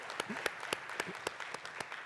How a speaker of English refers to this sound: This is, you want to clap for that man? Clap for Jesus. Woo!